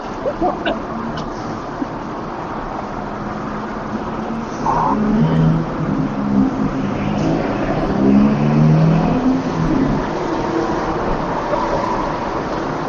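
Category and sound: vehicle, airplane taking off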